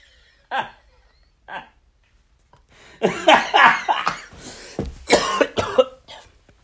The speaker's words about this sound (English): Oh, man. Sorry. I get a little cough coming on, actually.